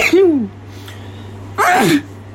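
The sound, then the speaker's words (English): A person sneezes twice: a sharp first burst with a voiced rising-falling cry, a short breathy pause, then a second louder, noisier sneeze, against a steady low hum. “I'm about to sneeze.”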